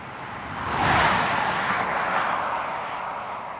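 Cars and semis rush past on Highway 101, about 6 miles north of Willits, between forested hills, a broad tire-and-engine roar swelling within the first second and holding steady as vehicles keep streaming by, with no voices.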